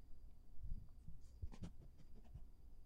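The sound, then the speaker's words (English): A dog sniffs in a handful of quick, breathy bursts, soft and airy, with a short cluster of sharper snuffles in the middle and no one talking. “Dog sniffing in your ear.”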